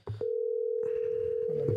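A steady electronic ringing tone from an outgoing phone call sounds loud and unbroken after a brief noise at the start, with soft rustling and murmur underneath.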